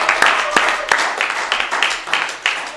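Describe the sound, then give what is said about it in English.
A church crowd cheers and claps together for people giving their lives to Jesus, a loud, dense wash of voices and sharp hand claps that stays steady and full throughout without pause. “Can we give a loud cheer for people who are giving their lives to Jesus?”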